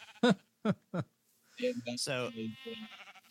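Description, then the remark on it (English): Three short, wavering, loud sheep bleats come in quick succession as sheep are sheared by shears sent out automatically once their grass is eaten, followed by a longer stretch of voiced sound that seems to mix more bleating with someone talking. “As soon as the grass gets eaten, it turns around and sends out the shears to shear the sheep.”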